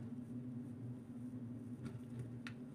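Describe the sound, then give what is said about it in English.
A steady low rumble and hum fill the inside of a moving car cruising up and down Central Avenue in Yonkers, New York, with a few faint clicks or ticks near the end and no one talking. “We're in a car.”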